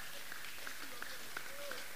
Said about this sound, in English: Clap for the man there.